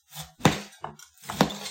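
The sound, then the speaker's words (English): Repeated sharp chopping strikes, three main hits with clattering, clinking resonance between them, as a rotating BPA-free plastic, dishwasher-safe chopper, filled so full it won't swill, is pushed down onto food in uneven rhythm. “But I'm just going to keep chopping.”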